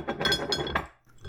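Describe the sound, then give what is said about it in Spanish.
Ceramic coffee cups and plates, served with cookies and cheesecake, clink together in a quick, busy cluster of bright knocks, then briefly fall quiet before one more soft clatter. “Estamos un poquito de con café y una galletita, ¿verdad? Pero torta de queso. Son platos, son tazas.”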